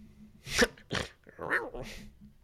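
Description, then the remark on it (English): A person makes a soft, breathy growl imitation: four short rough vocal bursts in quick succession, quiet, with no spoken words. “That was a very soft. You usually do your growl.”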